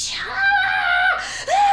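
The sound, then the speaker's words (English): A voice imitates a high, wailing scream that breaks into a sobbing cry, two sustained shrill bursts with a brief dip between them, loud. “She's just screaming and bloody murder, crying kind of thing.”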